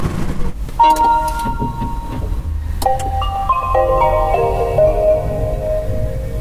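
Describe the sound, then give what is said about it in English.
An electric car's Japanese-sounding start-up chime as the car starts after charging, showing 93 miles: a short melody of sustained, bell-like tones that step up and down in pitch, ringing clearly over a steady low rumble. “As you can probably tell from that very Japanese-sounding chime, the car starts, it's charged, it says 93 miles.”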